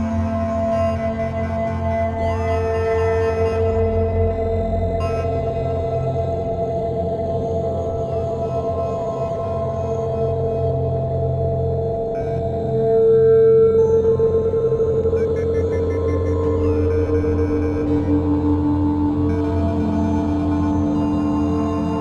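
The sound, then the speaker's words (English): A modular synth oscillator drones steadily, its tone washed into a thick reverb tail, with faint gliding pitches and a swell in the middle; no one speaks. “And the color is kind of like tone, and this smears it into like a reverb, but that just helps the oscillating like this mostly.”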